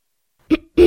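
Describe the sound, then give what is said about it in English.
Two quick, gravelly throat-clearing grunts, fairly loud, with a brief pause between them and the second one cut off abruptly. No one speaks. “He just had an orca on Skype clearing her throat.”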